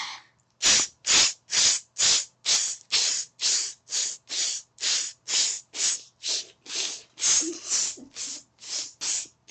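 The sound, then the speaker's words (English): A rapid series of about nineteen short, sharp breathy bursts from a vocal breathing exercise, each a hissing puff of air cut off abruptly, repeated in a steady rhythm with brief gaps between them and no talking. “So, like, you act like you're pulling a thread out of your mouth, but instead of, like, just pulling it, you, like, cut it.”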